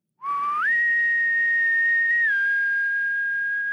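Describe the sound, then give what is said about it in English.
A single long, loud whistle holds a steady tone for over three seconds, rising to a higher pitch early on and dipping slightly near the end, with no talking. “I need a long whistle and then your line,”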